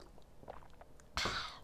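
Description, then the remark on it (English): Faint wet mouth clicks lead into one sudden, hissy slurp as someone sips a thick green smoothie called a green monster, the loud sucking noise lasting about half a second before trailing off. “Well, I gotta take a sip of my green monster here.”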